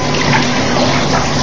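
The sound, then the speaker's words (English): Shower water runs in a steady, continuous hiss and patter as someone rinses off, fairly loud, with no voices over it. “Okay, let me rinse off.”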